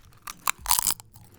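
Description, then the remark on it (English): Crisp crunching of thick, very salty potato chips: a few sharp bites followed by a dense burst of chewing crunches, loud, with no talking. “The chips feel a bit too thick. Yeah. It's almost a little difficult to eat.”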